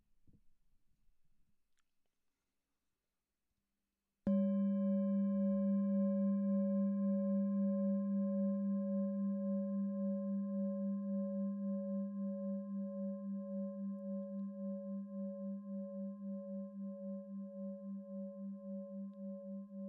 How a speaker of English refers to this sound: Listen to the sound of the bell, the movement through time.